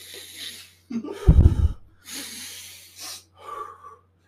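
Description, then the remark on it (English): A voice imitates a student breathing heavily while typing an essay in his dorm room: a series of loud, rough, airy exhales and inhales with a gravelly burst in the middle, with no words spoken. “And he just starts breathing really heavily.”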